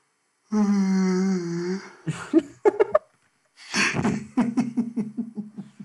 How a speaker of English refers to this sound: And that was a legitimate yawn as well.